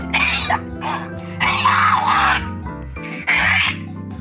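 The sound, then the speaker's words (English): A person gags and coughs harshly, in several strained, throaty bursts over a few seconds, with short gaps between them, trying to clear a small horse fly stuck in the throat. “There was a little horse fly got stuck in my throat.”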